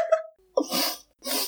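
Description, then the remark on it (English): A short squeaky vocal note, then two quick sniffs in a row, each a sharp, breathy hiss of air, fairly loud, with a brief pause between them and no talking. “It's just it's like all the sniffs over 3 months.”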